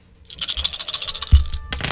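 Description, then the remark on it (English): Dice rolled for attack damage in a tabletop role-playing game clatter and skitter across a hard tabletop for about two seconds, a bright rattling tumble with a solid knock partway through as they settle, fairly loud with no voices. “And then that's okay, so 32 on the first hit of dice, but then it's a critical hit, so and then 20 on the second set, so 52 plus 4.”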